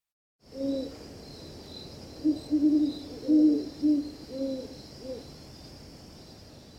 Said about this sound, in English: Two horned owls duet in twilight from a bare branch. One bittern calls.